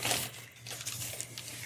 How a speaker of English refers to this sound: So then they do this. And they're opening the paper. Try not to tear it.